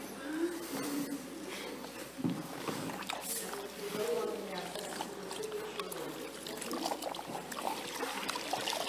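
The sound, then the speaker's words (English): Water is poured and splashes steadily into a basin for several seconds as a woman's feet are washed in a church, a soft continuous trickle and slosh, while people murmur quietly. “take off her shoes and her socks and going to wash her feet today as we set her apart for gospel ministry to go and take the gospel to the nation.”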